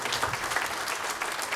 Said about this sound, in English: A big round of applause. Come on.